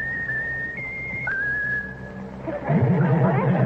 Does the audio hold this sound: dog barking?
no